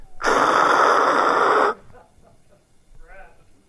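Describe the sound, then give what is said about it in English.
A voice imitates an off-station radio with a loud, steady burst of hissing static lasting about a second and a half, followed by faint breathy vocal sounds. “You're tuned into another station. Here's what that sound like to you.”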